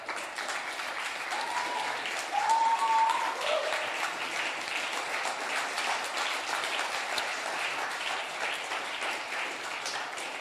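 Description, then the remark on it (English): A large standing church audience claps steadily, a dense wash of applause that holds at an even level for the whole stretch, with a brief whistle cutting through near the start and no speech. “If you're clapping, clap properly.”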